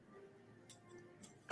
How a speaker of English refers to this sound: Why are you slamming ink pens? What's with the violence?